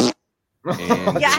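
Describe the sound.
A short vocal burst, a brief silence, then a buzzy, drawn-out mouth noise lasting under a second: a voice imitating a bubble of fart bubble gum popping.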